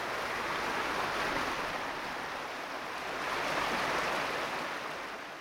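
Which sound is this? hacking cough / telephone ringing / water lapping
water lapping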